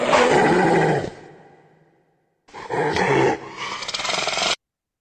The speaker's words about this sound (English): That one was actually a hyena.